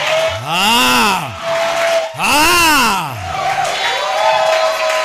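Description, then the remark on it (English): A church audience shouts in celebration, with two long, swelling cries rising and falling over a loud, continuous roar of cheering voices and a sustained instrumental tone underneath. “Those who understand spiritual language, they are celebrating it and they are shouting it.”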